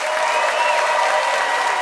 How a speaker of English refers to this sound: Let's see how the audience decides. By applause, who thinks Howie's preview punchlines prevailed? Howie Miller.